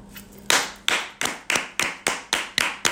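Hand clapping in a steady, brisk rhythm: eight sharp, bright claps about three per second, each with a short ringing tail, following a quiet half-second start with no voices.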